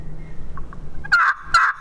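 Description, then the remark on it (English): Two loud, nasal hen turkey yelps scraped out on a friction call with a hickory striker used as a hen peg, clear, each a raspy rising note with a short pause between, following a few faint squeaks. “Hear that nasally yelp? That to me is an awesome hen yelp.”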